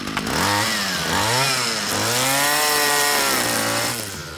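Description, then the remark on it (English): Power clippers trimming fast-growing shrubs in a greenhouse, a loud continuous motorized buzz whose pitch swoops up and down in repeated revs for several seconds, with no voices. “Take a pair of clippers and trim the shrubs until they look like something.”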